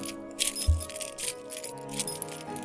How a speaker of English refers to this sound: And if you don't have the chains lying around, your keys will do.